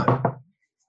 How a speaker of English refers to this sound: And he bangs on Dr. Sidney's door.